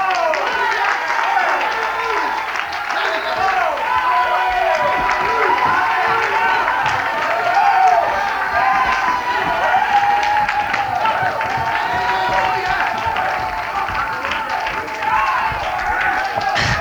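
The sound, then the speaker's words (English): A large crowd at a worship service claps and cheers continuously, a dense, steady wash of applause with shouting voices rising over it, loud throughout. “Stand up. Clap your hands. Clap your hands. Come on.”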